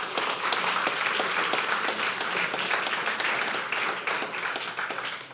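Steady, sustained applause from an audience, a dense patter of many hands clapping at an even loudness throughout, fading slightly toward the end, with no one speaking over it.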